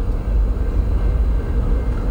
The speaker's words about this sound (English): This train is moving at probably about 20 miles per hour right now. It's not very fast. I'm honestly pretty sure I could sprint faster than this.